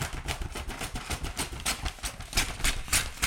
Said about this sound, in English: What I'll do is I'm going to wrap this big, massive one.